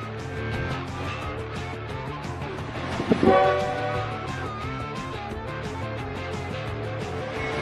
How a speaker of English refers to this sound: Roger's throwing more coal in the steam engine there. Train's rolling down the track.